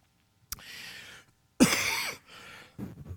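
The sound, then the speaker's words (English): A man clears his throat and coughs in several rough, breathy bursts, the loudest in the middle, with no talking. “Excuse me. Get me a cough drop here.”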